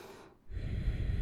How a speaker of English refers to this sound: You know, if you want to get a little noisy with your breathing, feel free. You know, you can do that by constricting the back of your throat as you exhale.